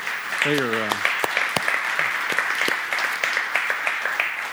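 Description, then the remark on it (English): A church audience applauds its pastors, Pastor Donald Sims and Rachel, in a dense, steady wash of clapping that runs the whole time, with a brief voiced shout or cheer rising above it near the start. “And yes, give them a hand.”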